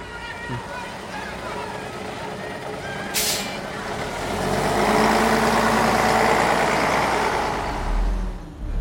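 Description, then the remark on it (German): A bus pulls up and rumbles, giving a sharp hiss of air brakes, then its engine swells and roars as it moves, with voices faintly underneath. “Ey, warte, nimmst du nicht den Bus?”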